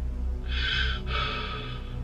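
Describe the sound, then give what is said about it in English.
Heavy breathing over a hotel room phone call at night: two long, raspy breaths, one drawn in and one pushed out, fairly loud over a steady low electrical hum, with no talking. “But all I could hear was heavy breathing.”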